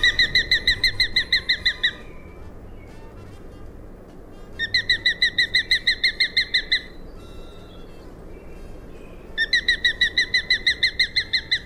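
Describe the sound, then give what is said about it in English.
A sharp-shinned hawk (Accipiter striatus) gives three bursts of rapid, high, piercing kek notes, each run lasting a couple of seconds with short pauses between, loud over a low background rumble. “And here's the rather bone-chilling call of the sharp-shinned hawk.”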